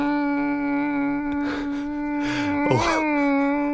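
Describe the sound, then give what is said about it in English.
Someone imitates a mosquito with a steady, nasal, high-pitched vocal buzz held for several seconds, with a few breathy wobbles and a brief pitch swoop near the end. “And it's the fade in and the fade out that's so distressing about a mosquito.”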